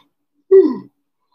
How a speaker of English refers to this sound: Ooh, shit, I keep yawning.